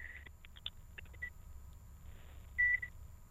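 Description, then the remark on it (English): An old microwave oven beeps as its door is opened: a short tone, a few clicks and quick bleeps, then one longer, clear beep, over a low background hum with no talking. “It's got a good like late 70s, early 80s beep, a bit like 2001: A Space Odyssey, that kind of thing.”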